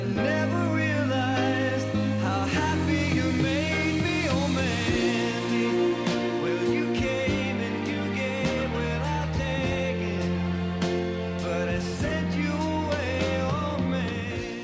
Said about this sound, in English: Jeremy, that song, whose new job won't involve any hard graft?